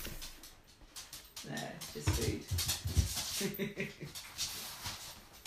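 A dog named Teasel whimpers and whines in short, breathy bursts over a few seconds, with rustling and soft background noise throughout.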